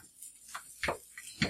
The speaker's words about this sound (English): You hear that sizzling going on.